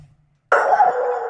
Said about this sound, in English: Hang on. Did the dog just barked into the mic? Bro, if my dog barks, my dog barks.